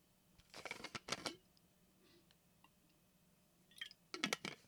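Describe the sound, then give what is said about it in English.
Someone drinks water: two quick, crackly sips or gulps close together, a quiet pause with faint handling noise, then another short burst of drinking. No talking. “Pardon me, my water break. Gotta hydrate, people.”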